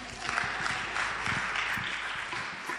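A group claps steadily for about three seconds, a dense, even patter of many hands at moderate loudness with no voices over it.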